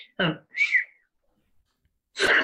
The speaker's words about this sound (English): I don't know why I whistled.